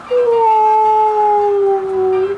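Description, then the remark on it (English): A loud, howling gust of wind, heard as a steady whistling moan that slowly sinks in pitch over a couple of seconds, with no voices over it. “Just then, a big gust of wind blew Piglet up into the air.”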